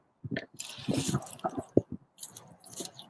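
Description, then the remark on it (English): Someone bites into an artichoke sandwich with mustard, cheese, tomato and spinach and chews, with several moist, crunchy bursts and soft squishing sounds in an uneven rhythm, fairly quiet, with short pauses between bites and no talking. “So, this is the artichoke sandwich.”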